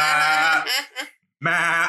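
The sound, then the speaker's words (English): Two loud goat bleats with a wavering, nasal tone: a long quavering call that trails off, then a brief pause before a second strong bleat. “So one of them is not a child. It's a goat.”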